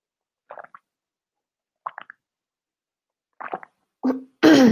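sipping tea

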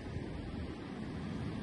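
waves on a beach

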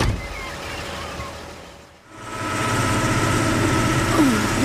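truck engine idling

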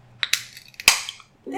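drink being cracked open

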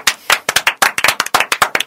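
clapping

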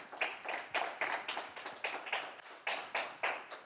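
audience applauding

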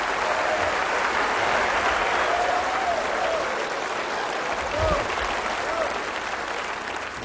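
audience cheering and applause

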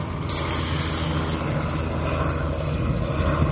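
low

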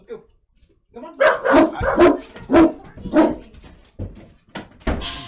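dogs barking

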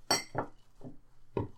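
glasses clinking

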